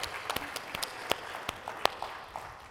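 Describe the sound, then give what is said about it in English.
Light, scattered audience applause from a small group at a session, with sharp individual claps landing irregularly rather than a steady roar, fairly quiet and thinning out toward the end. “Yeah, clap it up.”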